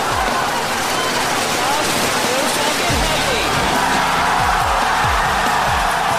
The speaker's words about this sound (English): SpaceX Falcon Heavy, go for launch. Falcon Heavy is configured for flight. T-minus 15, standby for terminal count. 10, 9, 8. Side booster ignition. 6, 5, 4, 3, 2, 1. Ignition.